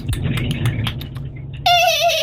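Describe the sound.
A person imitates a horse as a sound for callers to guess: breathy, clicking noises give way to a loud, high, quavering whinny that rises suddenly at the end and holds with a shaky vibrato.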